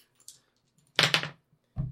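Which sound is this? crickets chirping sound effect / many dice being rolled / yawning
many dice being rolled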